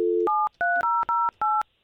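telephone number being dialed

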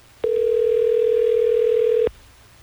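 telephone ringing

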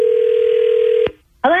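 telephone dial tone

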